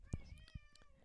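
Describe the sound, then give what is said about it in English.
A cat gives one drawn-out, wavering meow, fairly quiet, with a few soft low thumps underneath and no one talking. “Oh. You have thoughts? Yeah, the cat is.”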